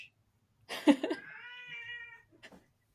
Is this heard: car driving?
no